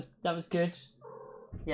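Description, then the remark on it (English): A cat cries out in a brief, drawn-out whine with a low purring rumble while a person speaks short phrases around it. “I apologise if you can hear my cat crying on this podcast.”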